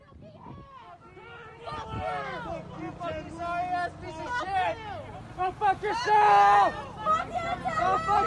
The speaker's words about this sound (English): Yeah, this is a bunch of leftists yelling at him as he's driving by in his car.